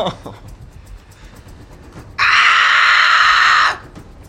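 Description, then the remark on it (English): A creature's harsh, piercing screech from down a hallway cuts in suddenly and holds loud and steady for about a second and a half before breaking off, preceded by faint, indistinct voices. “You hear a screech.”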